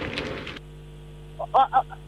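A goose gives three or four short, nasal honks in quick succession, following a brief rush of noise, with a steady low electrical hum underneath throughout.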